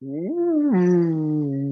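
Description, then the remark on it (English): A sea cow bellows once, a drawn-out, low, tonal moan that climbs, then steps down into a steady hum lasting nearly two seconds. No one speaks over it. “bellows again, not threateningly, but just enough to let you know that it's heard you.”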